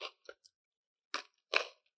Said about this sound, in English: Stop laughing and chewing. All you do is laugh and chew.